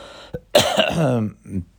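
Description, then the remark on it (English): A short, rough cough bursts out, followed by a raspy throat-clearing sound and a brief low grunt at the end. “I have to cough.”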